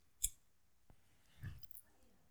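A sharp click, then a second softer tick, followed by a quick, soft whoosh as flash paper ignites and burns away almost instantly at such a high temperature that it turns into a gas, leaving nothing. Fairly quiet, with no talking.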